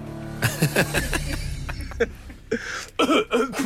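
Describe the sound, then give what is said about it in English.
A man leaving a studio coughs several short, harsh coughs in an uneven cluster, mixed with throat-clearing sounds and a low background rumble. “Oh, coughing and slamming the door.”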